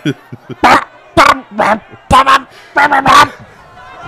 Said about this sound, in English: Dude, I love YouTube. I just typed an angry crowd and immediately got an angry crowd.